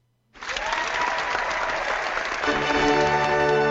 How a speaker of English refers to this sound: I need get the applause ready.